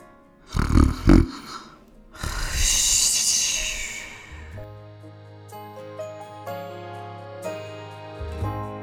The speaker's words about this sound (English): She lies down in bed, pulls the covers up to her chin, closes her eyes, and snores in an instant.